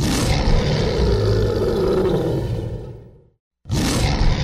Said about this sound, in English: my question is, why do lions always roar?